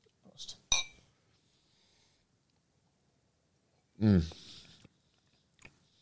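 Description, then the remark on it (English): Two glasses of McKellen whiskey clink together in a quick, bright toast, with a short high ring. After a pause comes a low vocal murmur, then a faint tap near the end. “There's no whiskey that has beautiful it. Beautiful amber color. Oh yeah. Cheers.”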